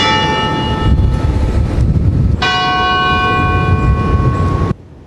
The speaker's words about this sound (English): Church bells ring to remember the residents of Lac-Mégantic who lost their lives when a runaway tanker train barreled into the city and exploded.